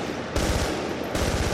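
Loud rapid gunfire rings out from behind Xanadu, crackling in two quick bursts, a sharp rattling volley followed by a brief lull and another burst, with no voices present.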